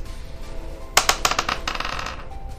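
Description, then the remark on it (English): A quick run of sharp clattering clicks as dice tumble and bounce across a hard tabletop, loud at first then settling into lighter rattles, with no talking. “You gotta really start rolling a different dice.”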